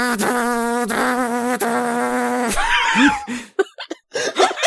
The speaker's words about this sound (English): Sound of distant chainsaw.